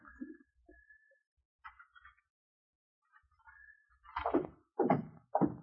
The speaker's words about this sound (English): lock the front door and pull the shade.